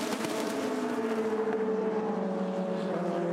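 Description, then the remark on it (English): Loud, sustained engine whine with steady harmonic tones sliding slightly in pitch, as a bundle of five race cars, including the bright yellow number 25 car, roars past on the track in a Firestone Indy Lights race. Continuous throughout with no talking. “As a matter of fact, they are a bundle of five as we watch that bright yellow number 25 car.”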